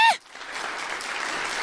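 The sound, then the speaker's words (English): A brief high-pitched tone at the start gives way to a steady wash of audience applause, many hands clapping at once in a dense, even roar of moderate loudness. “Into the heat and wave of applause.”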